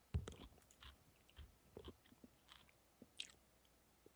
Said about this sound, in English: I'm just going to chew for 10 minutes.